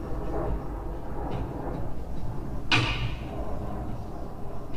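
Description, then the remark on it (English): A single sharp crack as regular, normal car glass is struck by a little ball and shatters immediately, followed by a brief bright crackling tail, over a steady low rumble of background noise. “Shatters immediately with a little ball.”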